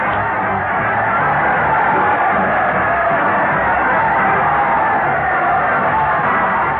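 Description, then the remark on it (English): A large crowd cheers and roars continuously, a dense wash of yelling and whooping voices holding steady and loud for the whole stretch with no pauses, as Fred Allen leads his parade of stars to the old Town Hall on the radio show Town Hall Tonight. “Listen to that crowd cheer as Fred Allen leads his parade of stars to the old Town Hall.”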